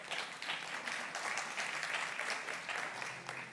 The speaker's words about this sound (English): That applause was the serve team, okay?